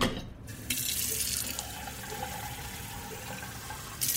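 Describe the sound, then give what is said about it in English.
Water gushes steadily from a tap into a coffee pot, filling it full to brew coffee, a continuous rushing hiss that starts after a brief pause and holds through, with a slight surge near the end. No one speaks. “He filled the pot full and started to brew.”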